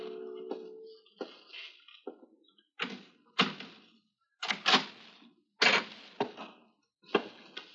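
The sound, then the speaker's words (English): Someone at a door, making a series of sharp knocks and rattling thuds at irregular intervals, moderately loud, with no voices. “But while I was taking mournful stock of my seemingly hopeless surroundings, I heard something that made my heart leap. Someone at the door.”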